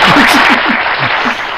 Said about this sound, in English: Well, actually, I forgot to give you the... on the first one, but that was a round of applause.